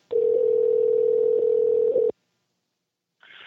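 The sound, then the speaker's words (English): A steady electronic ringback tone of an outgoing phone call made at 8:23 p.m. on October 13, one loud two-second ring followed by a pause of silence, heard clearly through the line with no one talking. “Let's just wait for another day for another phone call.”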